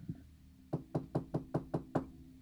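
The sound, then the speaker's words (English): Seven quick, evenly spaced, sharp knocks on a front door, rapping in a steady rhythm after a couple of faint taps at the start, with no voices. “So last night, I thought I heard someone knocking on the front door.”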